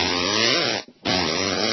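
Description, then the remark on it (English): A loud, buzzing mouth raspberry blown twice, each a sustained rough flapping of the lips, separated by a brief pause for breath, with no talking. “No, I'm doing raspberries, okay?”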